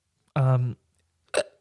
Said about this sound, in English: oh, I got a little burp, sweetie.